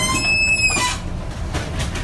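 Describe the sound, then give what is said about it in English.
The 12,000-ton livestock ship Gulf Livestock 1 creaks and groans in a typhoon in early September 2020. Recorded by a crew member on board, it carries 43 crew and nearly 6,000 cows from New Zealand to China. High, thin metallic squeals slide over a loud, steady rumble of wind and water, with sharper knocks later. “You're listening to the sound of 12,000 tons worth of ship caught in the middle of a typhoon.”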